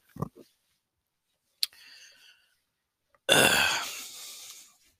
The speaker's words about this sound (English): Oh, as I burp into the fucking microphone again. Jesus.